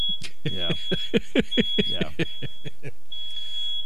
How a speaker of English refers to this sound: Uh-oh. Okay. Smoke alarm? Yes. Yipes. Yes, it is.